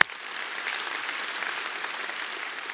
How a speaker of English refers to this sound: you can get that one more hand clap, and then we'll...